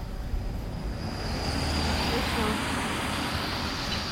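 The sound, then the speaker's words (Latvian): A steady, fairly loud roar of car traffic on a road, a continuous wash of engine and tyre noise with a low rumble underneath and no break across the few seconds. “Varētu mēģināt par, cik ir mašīnas ir.”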